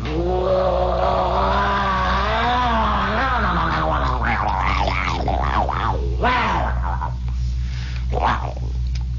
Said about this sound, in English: If there's anything that is more the sound of Europe at 2 or 3 o'clock in the morning, it's lying in your dark pad, lying in the sack there with the feather bed up around your ears, and hearing the sound of a motor scooter going by.